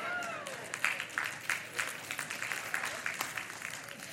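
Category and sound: crowd, audience applauding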